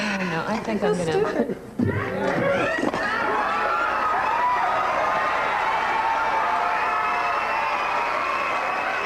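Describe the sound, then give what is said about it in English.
A studio audience erupts into loud, sustained cheering and shouting, a dense wash of many voices that swells after a brief thump and holds steady to the end, as Michael Richards aggressively drops cue cards in front of Andy. “It goes on like this for a while, until Michael Richards walks off to the side, grabs the cue cards, and then drops them aggressively in front of Andy, eliciting cheers from the crowd.”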